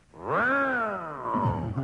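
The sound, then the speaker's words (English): Mr. Karloff growls like the monster in Frankenstein as his signal to answer a question: one drawn-out, loud, rough-voiced roar that swells and sinks in pitch over about a second and a half, ending in a gravelly rumble. “Well, I thought I might growl like the monster in Frankenstein.”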